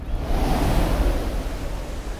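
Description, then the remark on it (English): A steady, rushing roar of heaving ocean waves, loud, with a deep rumbling low end and hissing spray that swells slightly without ever breaking into distinct crashes. No one speaks. “Again, the ghost sped on, above the black and heaving sea.”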